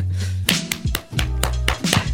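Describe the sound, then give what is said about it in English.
A handful of sharp hand claps, about six, land in a loose, uneven rhythm over a steady low hum, each one a crisp, bright smack with no voices around them. “I just clap.”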